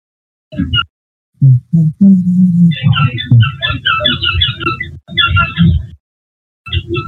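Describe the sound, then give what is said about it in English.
A dog at play: rapid clusters of high, chirpy squeaks ride over low, rumbling thumps and growl-like bursts, stopping briefly before one last short burst. “It's like squeak, squeak, squeak, squeak, squeak. Yeah, it's a dog playing.”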